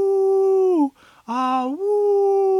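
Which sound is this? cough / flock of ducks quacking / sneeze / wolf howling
wolf howling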